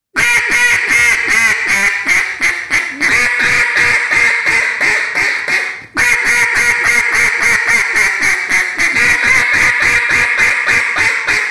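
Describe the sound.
A duck call blown in a long, rapid string of loud, nasal hen quacks imitating an aggressive, pleading boss hen, with a brief pause midway before the insistent, pleading cadence resumes.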